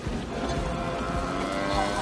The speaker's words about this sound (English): Another cow. Actually, I think that was the same one.